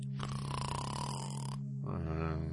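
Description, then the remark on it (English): A person pretending to sleep fakes a snore with a voice: a long, raspy, buzzing inhale, a brief pause, then a shorter second snort. Loud, with no talking. “Do you notice that when a person is pretending to sleep, they always snore, but when they're actually sleeping, it doesn't necessarily mean they're going to snore?”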